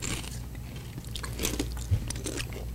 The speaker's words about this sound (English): I just crunched too, so see who crunches louder.